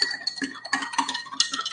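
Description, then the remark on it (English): A spoon stirs briskly inside a glass of water, mixing in a lot of salt for an egg-floating density experiment, clinking against the sides in quick, uneven taps with a bright ringing tone, steady and moderately loud, with no voices. “Mix it up. Make sure you mix it good.”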